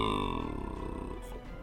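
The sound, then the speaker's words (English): A single long, loud, guttural burp made by a human voice imitating a giant frog after it stuffs eggs into its mouth, low and rumbling with a croaky rasp, fading out after about a second and a half. “It lets out a burp.”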